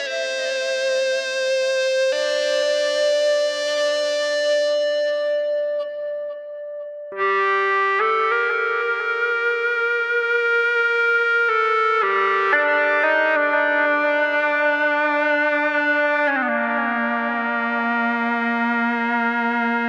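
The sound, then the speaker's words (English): Electric guitar sustained by an Ebow, a handheld electromagnetic sustainer working on one string at a time, holds long, smooth, violin-like notes that swell without any picked attack, sliding between a handful of pitches over a wash of reverb and delay. It plays alone, with no voices. “an Ebo, a handheld electromagnetic sustainer that works on one string at a time to keep the string vibrating”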